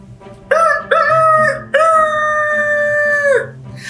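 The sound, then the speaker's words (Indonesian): A rooster crows loudly in the morning, a classic cock-a-doodle-doo with two short opening notes followed by a long, drawn-out final call. “Ya, suara ayam di pagi hari.”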